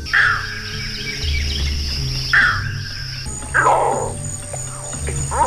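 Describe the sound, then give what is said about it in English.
A green heron gives three harsh, abrupt calls spaced a second or two apart, clear, over a steady background of insects buzzing and a low outdoor rumble. “Don't miss with the green heron, this week's featured feathered friend here on Talkin' Birds.”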